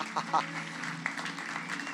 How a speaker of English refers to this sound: I just want us to give Him a clap. Let's just give the Lord a clap.